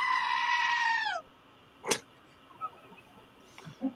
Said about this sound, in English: Here's a goat scream for you